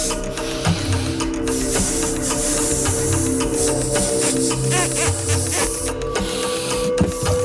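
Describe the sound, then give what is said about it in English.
A balloon being blown up by a person trying to pop it within 30 seconds, with a steady breathy rush of air into the rubber and occasional squeaky stretching sounds over several seconds as it grows huge, no talking. “See his mouth through the balloon. Okay, it's big. It's huge right now.”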